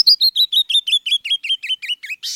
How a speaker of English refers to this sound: But it's the brilliant song of the canyon wren that most people remember best, a song perfectly suited to echo across the stony realms it calls home.